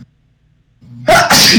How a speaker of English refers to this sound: Oh, fuck. Man, they sent some fucking super bug after me to sneeze.